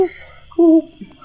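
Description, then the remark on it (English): A single short, hollow hoot from a large owl rings out clearly, steady in pitch for a moment before cutting off, with faint low background murmur around it. “So as this battle finishes and the corpse flower dumps its corpses, down flies an owl, a large owl that lands somewhere near Wynn.”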